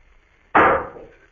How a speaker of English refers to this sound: Suddenly, I was conscious of a dull, muffled thud, a thud that was almost a clang.